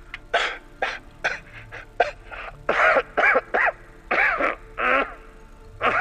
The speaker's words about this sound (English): breaths grow shallower and shallower until he starts violently coughing. He kneels on the ground.